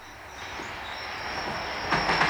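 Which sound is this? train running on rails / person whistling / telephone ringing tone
train running on rails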